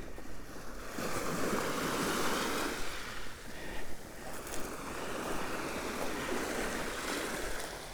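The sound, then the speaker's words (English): Soft waves wash steadily onto the beach at Port Hallock on the Hilford River, a continuous gentle hiss of surf with slight swells and ebbs, moderately quiet, with no voices. “Where the sea over the river is barely a whisper.”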